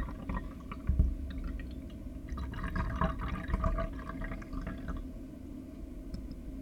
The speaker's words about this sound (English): Good, so these 2 minutes are over and we're gonna pour these two teas.